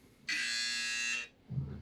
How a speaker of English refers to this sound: So we're going to hit the buzzer.